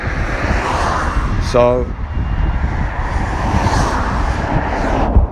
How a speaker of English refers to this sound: You don't normally hear anyone. You don't normally hear people around here. Just whooshing of cars.